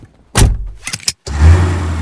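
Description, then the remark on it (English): A Volvo XC90 plug-in hybrid SUV with a 400-horsepower T8 twin engine starts up and drives off: a few short thumps and clicks, a brief pause, then a steady engine and road rumble. No one speaks. “What's it like to drive the Volvo XC90 plug-in hybrid?”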